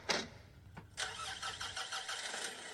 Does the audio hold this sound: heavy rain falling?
no